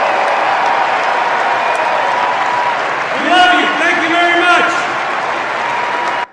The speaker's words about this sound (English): at the end of it, it's a standing ovation, and not necessarily for the person